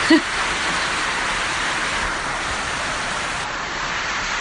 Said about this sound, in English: So I'll end this little snippet for the podcast by listening to the sound of rain on the roof. Gotta love living in tropical North Queensland.